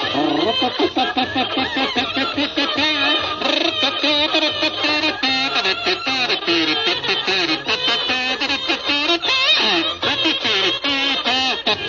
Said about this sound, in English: Now, hold it there. Cut out that quacking.